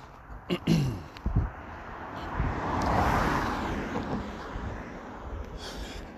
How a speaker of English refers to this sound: A car is very rudely flying past.